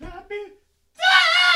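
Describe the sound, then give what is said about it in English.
A brief vocal sound, then a pause, then a loud, sustained high-pitched scream as a voice strains to reach a whistle tone, bright and piercing with strong harmonics. “What the fuck was that? It was like a scream.”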